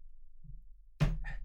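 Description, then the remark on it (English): A jammed wooden door takes a single dull, heavy thump as someone shoves against it trying to push it open, followed by a brief rattle, the door holding fast. Fairly loud, with no talking. “Push it open. I can't. See?”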